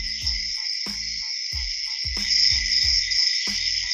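Crickets chirp steadily in a dense high-pitched band, while low hooting calls repeat roughly every 0.6 seconds underneath, like a night-time ambience loop with no one talking.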